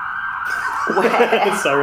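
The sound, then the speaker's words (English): An emergency vehicle siren wails steadily as it passes outside, moderately loud, while people talk over it for most of the short stretch. “Where the sirens will be into the song soon.”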